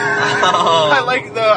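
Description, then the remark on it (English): A high-revving sport motorcycle (a crotch rocket) whines past, its engine pitch rising and shifting loudly, then briefly easing before surging again. “Because you got another motorcycle? Woo! And that one was a crotch rocket.”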